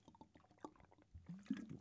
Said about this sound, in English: let's have a nice drink of water together